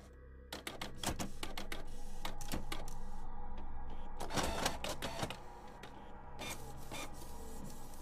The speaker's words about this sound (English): I clicked the print icon on my computer and printed the report as sheet after sheet of paper spewed out of my printer in my office.